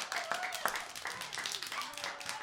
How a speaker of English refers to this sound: Clap for yourselves.